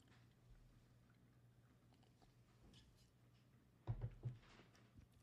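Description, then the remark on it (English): A few quick sips of coffee, three soft wet bursts in a row, over a low steady hum. No one talks. “I'm going to grab a sip of some coffee here.”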